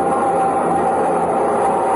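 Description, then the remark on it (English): A steady, dense roar of a subway train with a faint high whine running through it, loud and unbroken for the whole moment, with no voices. “And between the subway trains and the soft cluckings of the mob, a man in a brown ready-made suit shouldered his way.”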